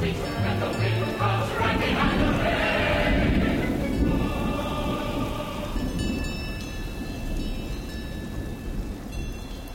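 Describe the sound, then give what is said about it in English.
Deep, rolling thunder from an approaching storm rumbles steadily over a hiss of rain on an alpine mountaintop in the Swiss Alps near the town of Les Moulins, while the bells of a group of cows seeking refuge from the storm clang in irregular, overlapping tones through the second half. “We leave you this week high on an alpine mountaintop where a group of cows, their bells clanging in the breeze, seek refuge from an approaching storm.”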